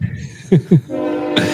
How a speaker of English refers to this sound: I hear the train. I didn't get to the mute button quick enough.